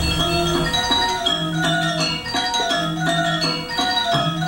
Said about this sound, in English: There's that big gong.